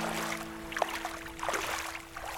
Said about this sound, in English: And just in the distance, I see a wee boat coming in.